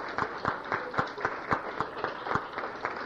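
Audience applause: a steady wash of clapping with distinct, evenly spaced sharp claps standing out, about three or four per second, at moderate loudness with no voices.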